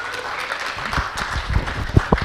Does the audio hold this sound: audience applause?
yes